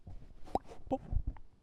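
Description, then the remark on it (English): A drink being poured, heard as a few soft, irregular glugs and plops of liquid over about a second and a half, faint and with no voices. “Pouring it.”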